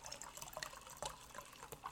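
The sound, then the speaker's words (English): Fairway brand Prosecco pours steadily into apple cider, a continuous splashing stream with small fizzy crackles and a few brighter bursts as the liquid hits the glass. No one speaks. “That is some good pouring.”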